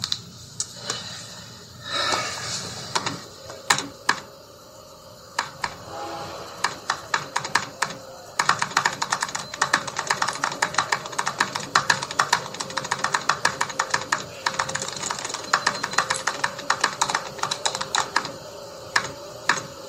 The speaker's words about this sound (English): Hello, computer. Just use the keyboard. The keyboard. How quaint.